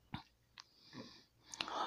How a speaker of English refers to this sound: Gosh, I can't even talk straight after all that anymore. Let me take a sip because it's so exhausting.